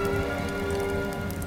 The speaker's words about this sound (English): Overnight, the freezing rain turned to snow. By daybreak Monday morning, New York City was engulfed in a furious blizzard with winds as high as 85 miles per hour